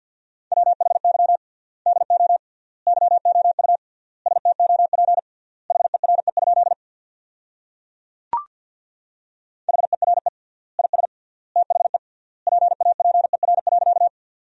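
Rapid Morse code beeps at 50 words per minute with triple word spacing, sending sentences built from the top 300 words: a steady mid-pitched tone keyed in quick dots and dashes with pauses between words, broken once by a brief sharp click.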